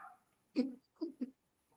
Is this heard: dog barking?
yes